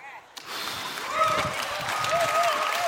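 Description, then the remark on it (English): After a brief hush, an audience bursts into steady, dense clapping that holds at an even loudness, with a few raised voices and whoops rising over the applause. “Don't clap for this.”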